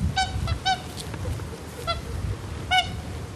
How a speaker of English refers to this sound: For a kilometre in every direction, all I can see around me is water, except there are still the tops of fences, the tops of gates. But the only livestock to be seen here now are all of these hooper swans in the middle of what were once fields.